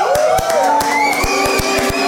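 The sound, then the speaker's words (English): A crowd cheers and shouts steadily throughout, with sharp claps punctuating it at an uneven rhythm and rising, whooping voices drifting above the loud roar. “Why are you cheering?”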